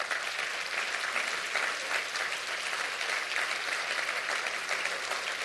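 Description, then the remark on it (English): Sustained applause from a large gathering at an evening service, clapping for the word (the sermon): a dense, steady wash of many hands clapping at once with no break, loud and even throughout, with no voices standing out. “Clap for the word tonight.”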